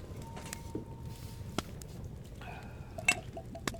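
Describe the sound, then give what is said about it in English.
Whiskey poured into a glass, with a few sharp glassy clinks and a brief ringing, rising tone as it fills, over a low, steady rumble. “Here, I'll pour you a glass, too.”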